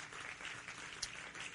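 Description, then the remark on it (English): Many hands clapping together in praise to God in a steady, dense patter that holds at an even level throughout, with one brief sharper clap standing out midway. No voices are heard. “Clap your hands to him again.”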